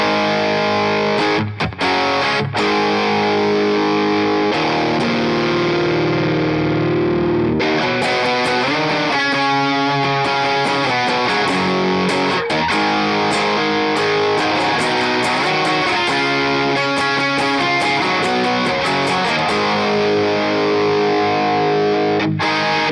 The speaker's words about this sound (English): It's a distortion pedal, man. Yeah, it is. Real cut. Crisp.